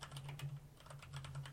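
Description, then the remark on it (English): Rapid clicking of keys on a computer keyboard, a quick run of light taps over a steady low hum, moderately quiet. “Just typing again, because I remembered something.”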